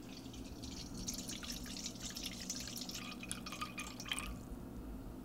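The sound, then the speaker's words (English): Water runs or pours into a container for about four seconds, a steady splashy trickle with some dripping, then it stops; 315 grams of water being weighed out on a scale for dough. No one speaks. “So we're going to get 315 grams of water.”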